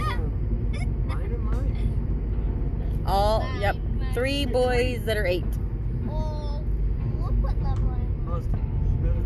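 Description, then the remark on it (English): Steady low road rumble fills the inside of a moving car, constant and fairly loud, while an adult and the high voices of three 8-year-old children in the back seat talk over it. “I have 3 8-year-olds in the back seat of my car.”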